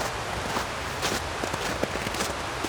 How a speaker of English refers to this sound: The crackling and crunching of leaves, twigs, and gravel under your shoes is replaced by snow being patted down by your boots.